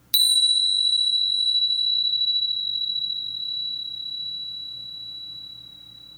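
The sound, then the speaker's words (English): A single meditation bell, rung once to start a guided meditation, rings out clearly, its bright, pure tone sustaining and slowly fading over several seconds, heard alone with no talking. “I'll ring my bell once to start and once to end.”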